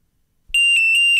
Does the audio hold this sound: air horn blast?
no